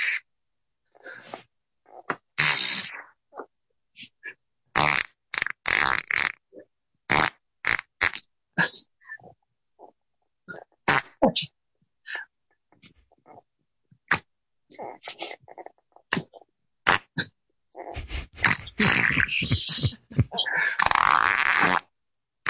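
A man lying on his back performs Taps by farting, live on Zoom: a long run of short sputtering bursts in an uneven rhythm, building toward louder, drawn-out blasts near the end, with no talking.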